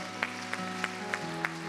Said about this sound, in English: Let's give the Lord a hand clap of praise this morning.